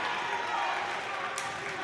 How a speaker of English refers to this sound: Pretty good crowd on hand tonight. You can hear them on the broadcast.